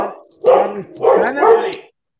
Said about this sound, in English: Wait a minute. Let me let the dog out. I don't know why he's barking. Just a second.